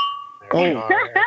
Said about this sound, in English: Oh, right. Dang, that sounded like something was about to break, bro. Yeah. A little too aggressive with the clink there.